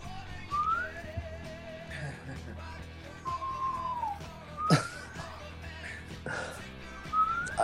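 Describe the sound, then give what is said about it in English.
A person whistles a series of short, rising and sliding notes, fairly clear, with brief pauses between phrases, murmuring voices underneath, and a sharp knock partway through. “You just entered the Whistling Nuts Club.”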